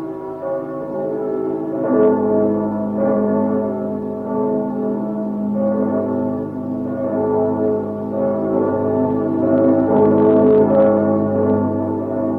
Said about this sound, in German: Glocken von St. Jakobi aus der alten Hansestadt Stettin.